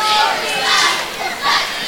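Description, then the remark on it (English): A dense roar of a large stadium crowd at an American football game, steady and broad, swelling in a few waves over a couple of seconds with no single voice standing out. “Bring the crowd mic up a little bit.”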